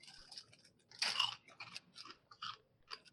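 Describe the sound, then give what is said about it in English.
Crisp crunching of someone chewing a crunchy peanut butter Butterfinger candy bar, with a loud bite near the start followed by a steady run of smaller crackly chews, no talking. “Looks like the Butterfinger crunchy bits in there.”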